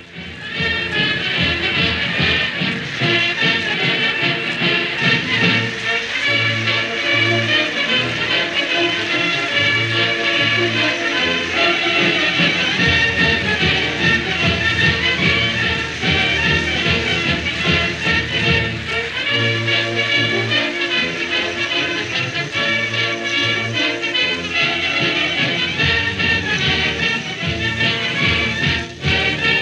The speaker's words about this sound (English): Temple University playing Hail to the Chief.